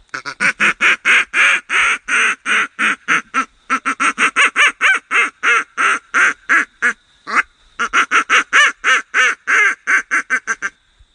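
A duck call blown as a rapid comeback call: a long, loud string of short, raspy quacks in quick succession, with a few brief pauses between bursts and no talking.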